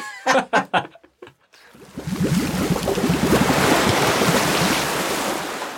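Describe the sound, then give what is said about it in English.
A brief voice at the start, then a loud, steady wash of ocean waves and splashing water rushes in and fills the rest, a continuous surging roar with choppy splashes. “Splosh, we're sploshing back in.”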